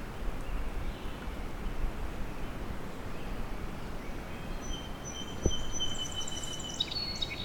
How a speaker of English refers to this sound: There's a song sparrow.